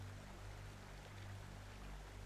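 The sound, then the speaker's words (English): Maple sap from maple trees runs in a steady, quiet trickle in a room, a continuous soft wash of flowing liquid over a low hum, with no voices and no pauses. “And so, as the maple trees have sap, which you can hear running in the room, and that she sort of gestures around, that sap is therefore my blood, for it is the blood of the maple trees, and I am the maple trees.”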